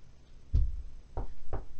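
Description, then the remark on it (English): Three muffled knocks on a bedroom door by the speaker's mother, a single rap followed after a pause by two quicker ones, heavy and thuddy, heard alone over a quiet background. “My mom just knocked on my door.”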